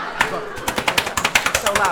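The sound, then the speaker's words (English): Rapid bursts of gunfire crackle in a fast, irregular rhythm, a dozen or so sharp loud cracks packed into two seconds, with a faint voice murmuring underneath. “So what other type of guns do you have?”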